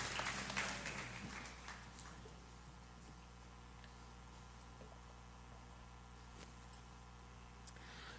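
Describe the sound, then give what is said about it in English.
An audience's applause of praise fills the opening couple of seconds, a dense wash of many hands clapping as people are being seated at a church service, then quickly fades into a low, steady hum. “Give him one more hand clap of praise as you're being seated today.”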